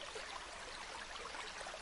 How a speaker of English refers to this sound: You can also do the sounds of running water.